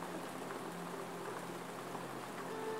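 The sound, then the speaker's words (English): Steady rain falls in a continuous, even hiss of countless drops, with a faint low tonal hum underneath and no voices. “Perhaps just hearing that rain allows you to go to your knees one more time, allows you to check one more time.”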